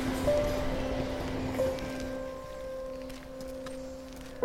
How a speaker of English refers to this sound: Through now to Scrapyard Meadow. Adjacent to the railway line, we can hear a National Express C2C on its way into Fenchurch Street.